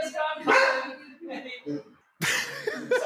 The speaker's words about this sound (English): It's the least aggressive dog I've ever met in my life, and he's like, again, it's just.